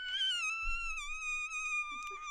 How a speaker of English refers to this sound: Oh, that was a door opening.